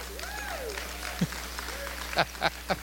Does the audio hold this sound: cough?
no